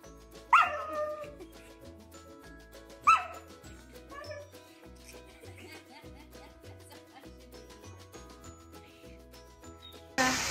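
A dog lets out two sharp, loud barks a few seconds apart, then a softer yip, all over a steady background of music with a pulsing bass line.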